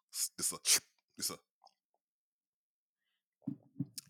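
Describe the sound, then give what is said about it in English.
Several quick slurping sips of a drink in a short burst, followed by a pause and then a low, murmured voice. “Let me stop being a little sappy and have a little drink. A little sip of a drink.”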